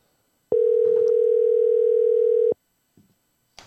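A steady, unbroken telephone dial tone, heard while a phone call is being placed, hums loudly for about two seconds, then cuts off, followed by a couple of faint clicks and rustles.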